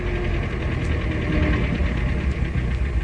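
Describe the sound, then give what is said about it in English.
A car engine idles steadily after the car pulls up at a garage, a continuous low rumble with a faint knocking texture that holds at an even, fairly loud level throughout, with no one speaking. “Do you want me to drive in or pull up here?”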